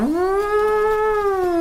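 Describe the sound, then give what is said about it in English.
A voice imitates a horn call with one long, steady, mid-pitched note that swells briefly at the start and holds for under two seconds, with a buzzy, reedy tone and no talking. “But after a while, you hear what sounds like some sort of a horn.”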